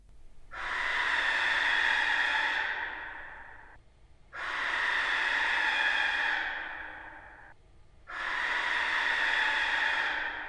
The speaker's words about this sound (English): So I decided to reverse the method and slow down the barn owl to see where that would take me.